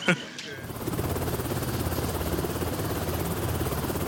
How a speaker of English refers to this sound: Once airborne, we loft up over the island of New Britain and head toward the unknown. The helicopter will fly us 40 miles inland to the remote village of Vunalama.